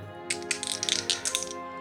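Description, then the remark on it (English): A percentage die (D100) is rolled, clattering and tumbling across a hard surface in a quick run of sharp, bright clicks, slowing briefly before one last knock as it settles. No one speaks. “I am going to roll a percentage dice, D100.”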